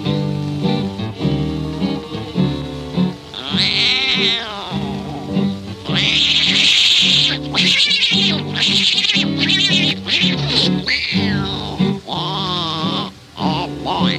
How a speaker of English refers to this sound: Now on that very same night, that old tomcat started a fight. And this is the way it all did sound to me.